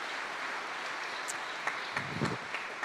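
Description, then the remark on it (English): An audience gives a round of applause to God for the young folks who led worship, a steady wash of many hands clapping at a moderate level, with a few sharper claps and a brief low murmur standing out near the end. “So I would like to encourage and invite all of us to give a round of applause to God for raising them up and our young folks who have worked so hard.”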